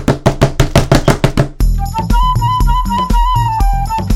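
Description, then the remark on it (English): A door being broken down: about eight heavy, evenly spaced blows pound loudly in quick succession, then abruptly give way to music with a steady bass line. “Ah, they're breaking down the door!”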